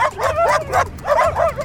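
A dog barks and yips in quick, excited bursts, about five or six sharp calls with short gaps between them, alone without any talking.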